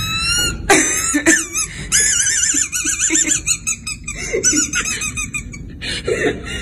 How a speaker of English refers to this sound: This is her getting her son to laugh after he has swallowed a dog squeaky toy.